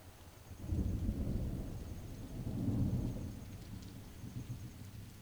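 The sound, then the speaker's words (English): Low, rolling thunder rumbles through steady rain, swelling twice in long deep waves before easing back to a softer background patter. No voices. “After a while, the energy of the storm subsides.”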